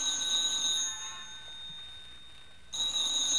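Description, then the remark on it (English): A telephone bell rings in bright, high-pitched bursts: one ring fades out, a brief pause follows, then a second ring starts sharply. No one speaks. “Oh, look, what difference is a phone call now?”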